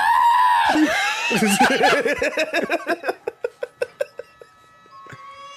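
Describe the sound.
A person voices a loud, warbling, bleating scream like a goat, then breaks into a run of quick, evenly spaced staccato yelps that fade out near the end.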